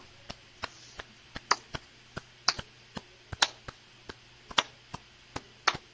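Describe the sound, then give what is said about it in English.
Sparse, scattered hand claps, thin and uneven, a few sharp slaps at a time with no steady rhythm. Some land louder and brighter than others, and there is no talking. “These are some sorry claps.”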